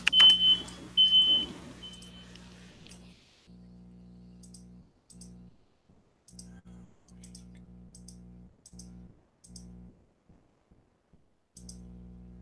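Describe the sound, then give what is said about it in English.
A fire drill alarm heard from a remote participant's end of a call during a live MMA show: a shrill, high tone pulses through loud, noisy static for a few seconds, then gives way to a low droning hum broken by repeated clicks. “I think he was having some fire drill issues, as you definitely heard on his end.”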